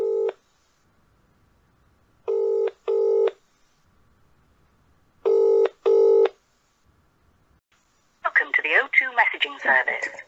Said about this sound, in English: I'm just going to keep ringing him.